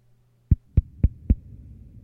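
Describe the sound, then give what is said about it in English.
Four heavy, booming knocks on a door in a steady, even rhythm, loud, followed by a low lingering rumble with no voices. “Just the most ominous door knocking in the history of the fucking world.”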